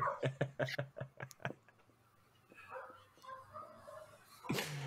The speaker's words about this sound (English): so there are also dogs. It's not just cars. Yeah, I've turned on the dog sounds now.